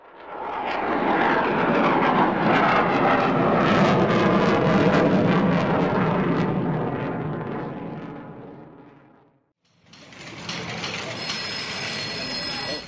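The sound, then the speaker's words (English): A loud, roaring aircraft engine powers up for takeoff from runway 9, holding a dense, steady roar before fading away, followed by a brief, quieter mechanical whine with high-pitched tones. “Titan Tower, this is Ulysses, holding short runway 9er for departure to Romeo 2, Delta 2”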